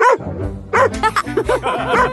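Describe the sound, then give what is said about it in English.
A fuzzy little dog yaps in a quick burst of high, bright barks, about half a dozen close together after a short pause, loud. “Fuzzy the dog.”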